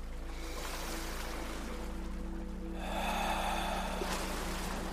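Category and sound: nature, crashing ocean waves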